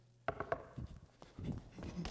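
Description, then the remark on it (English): Knocking on a door: three quick, loud, sharp raps in a rapid burst, followed by softer, duller thumps and rustling. “Imagine bringing yourself to walk up the driveway and knock on the door of your master's house.”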